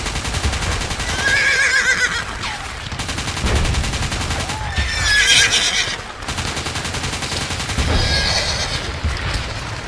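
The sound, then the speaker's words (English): Horses neigh and whinny loudly in repeated bursts while rapid gunfire and explosions crackle throughout, a chaotic First World War battlefield scene from the film War Horse, with no speech. “Hearsay, say what you hear, and the answer is War Horse.”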